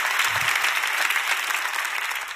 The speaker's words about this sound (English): Thank you, guys. Can we appreciate the worship team one more time? Clap your hands for them.